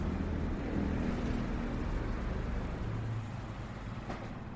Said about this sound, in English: We've made our way over the very busy road that we can hear on the pedestrian bridge